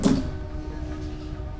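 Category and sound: vehicle, train passing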